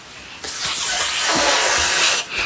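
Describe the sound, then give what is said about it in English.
A child pretending to be a snake makes a long, steady hissing sound, fairly loud, lasting about two seconds before trailing off. “Are you the snake? No. Oh, you're just... I'm just pretending.”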